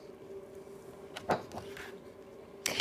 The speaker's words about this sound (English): Julian shut the cabin door tightly to keep it safe from burglars and bears.